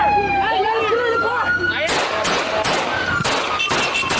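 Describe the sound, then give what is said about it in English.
A wailing siren sweeps up and down, then a burst of loud, rapid gunfire erupts in several sharp volleys as people shoot at a car driving away, with shouting voices mixed into the noisy chaos. “This is people shooting at one of the cars or something like that.”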